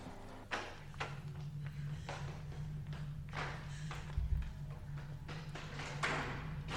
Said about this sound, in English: I always like this part right here where she's banging against the elevator. Freaking out.